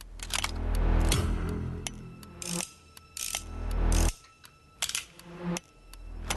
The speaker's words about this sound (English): Don't scare me with sounds. But they got the fucking ticking clock, just like the Karen movie.